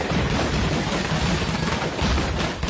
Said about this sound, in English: I mean, that initial explosion is pretty impressive. Mm-hmm. Right here. You feel the sound.